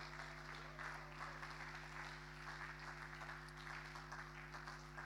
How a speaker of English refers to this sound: Come on, give them a big round of applause.